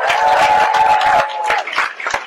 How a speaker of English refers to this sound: If you're glad you woke up this morning, clap your hands and make some noise.